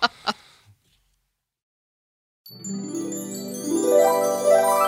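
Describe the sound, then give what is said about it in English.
After a few short knocks and a pause, wind chimes start ringing, a steady shimmer of overlapping bright tones with rising glittering runs that grow a little louder toward the end, with no voices. “I hear the sound of wind chimes.”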